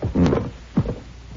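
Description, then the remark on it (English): Objects are cleared off a table to prepare for table tapping: a cluster of wooden clatters and thumps, then a second solid knock a moment later, with no voices. “Help me clear the table and you'll see.”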